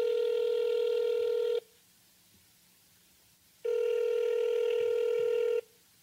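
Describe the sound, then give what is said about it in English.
Two long, steady electronic telephone ringing tones, each lasting about a second and a half, separated by a pause of silence, loud and clear with no one speaking, as a call is placed to Dan Savage's cell phone. “Why don't we give him a call?”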